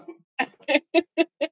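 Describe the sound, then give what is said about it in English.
A person's voice imitates a cat's meow with a quick run of about five short, evenly spaced meow-like syllables, fairly loud, with no other sounds around. “Just making the meow sound.”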